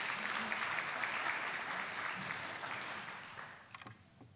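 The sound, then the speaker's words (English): A crowd claps for a handbell choir in steady, dense, continuous applause that gradually tapers off, ending with a few scattered final claps. “Let's have another round of applause for our handbells.”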